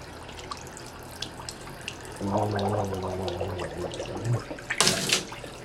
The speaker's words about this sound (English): Just a little bit. A little gurgle from a 100-year-old sink. Must be true porcelain.